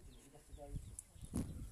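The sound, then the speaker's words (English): Faint ducklings, ten of them with their mother duck, peep a few times in a quiet outdoor setting, with soft rustling and a couple of muffled thumps. “You might be able to hear the chicks.”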